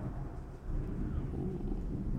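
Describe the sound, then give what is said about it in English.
A deep, continuous rumble of thunder fills the whole stretch, swelling a bit louder partway through and rolling on without a break. No voices are heard. “Oh, yeah, I don't know if y'all heard that or not, but yeah. Some loud-ass thunder.”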